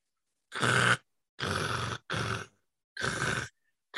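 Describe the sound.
A voice mimics harsh black metal vocals with four raspy, noisy, growling bursts of about half a second each, loud and gritty, separated by short silences.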